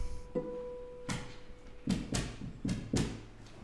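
Toby the dog's tail thumps against a surface in a loose, irregular series of soft, dull knocks, some in quick pairs, after a brief steady tone fades out at the start.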